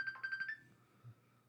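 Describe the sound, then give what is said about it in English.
A mobile phone sounds a messenger notification, chirping in a quick burst of five or six bright electronic pulses, then cuts off and fades, leaving a faint low hum. Fairly quiet, no voices. “Are you ringing and your phone doesn't even light up?”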